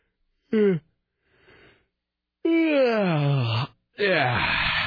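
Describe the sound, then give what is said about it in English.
A person lets out a loud, exaggerated yawn: a short vocal catch, a soft breathy inhale, then a long moaning yawn sliding down in pitch and another drawn-out yawning groan. “I'm just seeing if we can make everybody in Portland yawn.”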